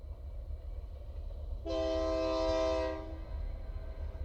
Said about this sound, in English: The sound of the distant train I love. Just really kind of hauntingly beautiful sort of different call of the train as it comes through. Kind of a lonely sound, you know, to hear it, especially at night or in the morning.